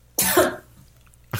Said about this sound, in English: That was a very telling cough